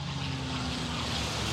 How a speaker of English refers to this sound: Well, lucky because I see a little plane flying over.